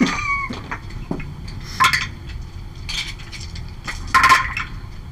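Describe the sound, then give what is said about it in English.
Metal dice click and clink together in a few short, bright bursts spaced irregularly, with faint low rumbling in the background and no talking. “Give me the clicky clicky mantra.”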